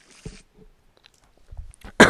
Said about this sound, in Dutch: Ik neem even een slokje water.